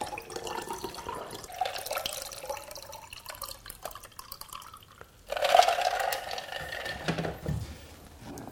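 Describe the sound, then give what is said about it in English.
Homemade elderflower cordial and water poured into glasses over ice on a summer's day at Lower Blakemere, three glasses being filled: a steady gurgling splash with faint clinks, pausing briefly before a second, louder pour. No one speaks. “Homemade elderflower cordial with ice and water. Three glasses, one for myself,”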